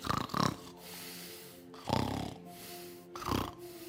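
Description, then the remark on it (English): A person imitates snoring with three rough, rattling snore sounds at a slow, even rhythm, each a broad nasal rasp with quieter breathy gaps between, moderately loud. “How do you snore”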